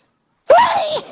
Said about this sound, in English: I just want to say that I feel like I have to sneeze, but it's not coming, so I'm going to just keep talking.